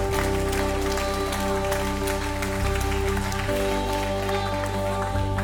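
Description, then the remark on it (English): An audience applauds people who raised their hands after praying, in a steady, dense wash of clapping that stays loud for several seconds, with sustained keyboard chords holding underneath the whole time. “Would you give them a round of applause, those who raised their hand?”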